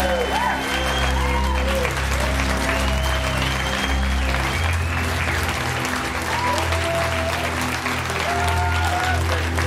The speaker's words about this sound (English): honor and absolute deep pleasure to give the 2022 Stellar Citizen Award in Philanthropy and Education to none other, the one and only Dr. Billy Carson. Big round of applause.